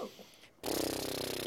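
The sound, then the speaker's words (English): After a brief quiet moment, someone blows a sustained, fluttering lip trill as a breathing exercise (horse lip breathing), a fairly loud buzzing vibration of the lips lasting about a second. “One of my favorites is horse lip breathing.”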